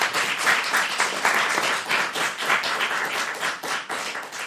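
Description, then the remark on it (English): A crowd applauds the teams after a scoring round of a quiz, a dense wash of many hands clapping at once, sustained and fairly loud for a few seconds with slight swells in intensity and no voices. “Oh, give them a round of applause.”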